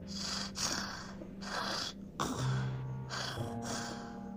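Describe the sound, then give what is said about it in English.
A voice imitates heavy mouth-breathing, loud panting in rhythmic rasping breaths, about six in and out over a few seconds, with a low hum underneath. “…'s panting was kind of scary, but it wasn't enough for me.”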